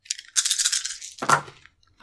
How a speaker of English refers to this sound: And for those three traits, you get three gold dice. I do. And now you're going to roll all of those dice on the escape.